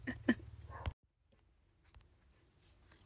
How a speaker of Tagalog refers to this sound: Shuta, may tumahol na aso, wait lang.